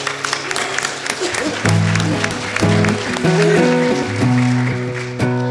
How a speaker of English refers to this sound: You can clap.